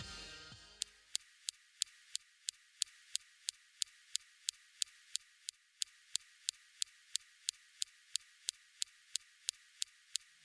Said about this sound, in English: The first recording of SuperCam's laser firing on a rock target on Mars came on Sol 12. The target was about 10 feet away from the rover. In this recording, what you hear is the first time we've used the laser and listened to it on Mars.